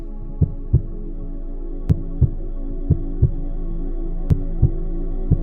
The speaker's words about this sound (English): It's so quiet that you can hear your heartbeat.